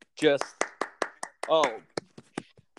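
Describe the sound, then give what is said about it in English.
A short burst of sharp hand claps in an uneven rhythm, about a dozen in all, with a couple of excited vocal whoops near the start and middle, congratulating a man on his engagement. “Can we get a clap?”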